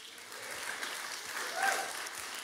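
A crowd claps steadily for a couple of seconds, a dense wash of many hands that swells slightly louder near the end, with no talking over it.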